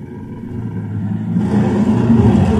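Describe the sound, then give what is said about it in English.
A deep, rumbling bear roar growls steadily for a couple of seconds, then turns louder and harsher, with a rough, raspy edge. No one speaks over it. It is played at a stand-up comedy show as the cue that a comedian's 60 seconds on stage are up. “That means wrap it up then, or else you're going to bring out the angry West Hollywood bear.”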